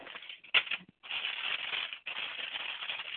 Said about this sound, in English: Sounds like somebody's unmuted. I'm hearing rustling of papers, so you might check your phones, please.